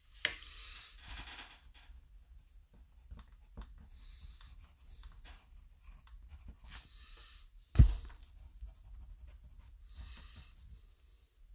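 Quiet scratching of a pen or pencil on paper as game predictions are written down, in short strokes and pauses, with soft rustles, a sharp tap partway through and a faint background hum. No one speaks.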